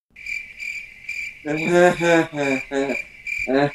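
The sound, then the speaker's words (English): Crickets chirp in a steady, pulsing trill, joined after a moment by a louder, harmonic buzzing call that swells in repeated bursts, like a chorus of insects and frogs. “I can tell you how that's going to work. crickets.”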